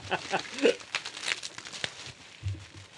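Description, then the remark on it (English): Irregular crinkling and rustling of gift wrapping paper being pulled open off a pack of award-winning honey, in quick scratchy bursts, with a brief low voice murmuring near the end. “Unwrap it.”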